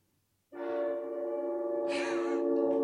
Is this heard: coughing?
no